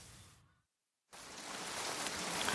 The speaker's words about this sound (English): I've just felt a drop of rain.